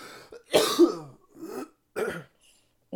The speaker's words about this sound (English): because the more I talk, the more I cough, the more I cough, the more I edit, the more I have to edit, the less happy I am